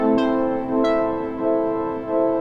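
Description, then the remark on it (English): A synthesizer preset plays a rich, sustained harmonic chord with bright plucked attacks at the start, its loudness swelling and dipping in a slow, steady pulse from LFO modulation. No one talks. “There's an LFO on the back end of that. That sounds really good.”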